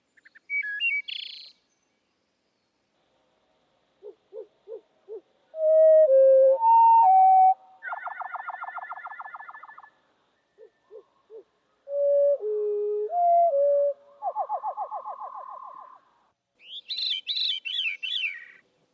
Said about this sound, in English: He was really interested in birds, and he made these recordings of wood thrushes and related species. So there's veeries as well as wood thrushes. And they're heard at normal speed and then at slow speed.